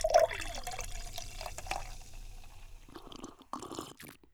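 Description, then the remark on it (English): Beer, a Pilsner, pours from a tap bearing a German eagle crest in a steady hissing stream of liquid, then breaks into a few sputtering, splashing bursts near the end as the glass fills. “You need only serve one more. I have saved the best for last. This tap has one of those German eagle crests on it, so I think it's safe to say it's pretty good.”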